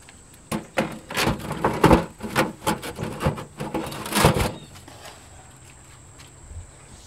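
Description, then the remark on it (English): A heavy, thick metal door is scraped and clanked into place over the entrance of a brick bread oven holding loaves, a run of loud knocks and grinding scrapes lasting a few seconds before settling into quiet. “Once the loaves are inside, he fits the thick metal door over the oven's entrance and notes the time.”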